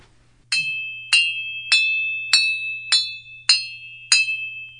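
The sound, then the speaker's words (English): A hammer strikes an anvil, a square piece of steel played in Aaron Jay Kernis's Invisible Mosaic 3 at the Cabrillo Festival, seven times at a steady, even pace, each blow a bright metallic clang with a sustained high ringing tone that lingers between hits, over a low background hum. “So let's hear a little bit of these anvil notes.”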